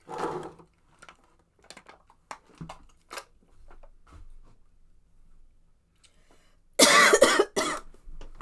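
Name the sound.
coughing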